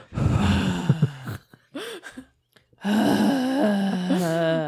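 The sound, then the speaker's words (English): Heavy breathing by a man into a microphone, with loud voiced sighs and groans, one long burst, a few short gasps and pauses, then another long moaning exhale. “He was breathing into his microphone.”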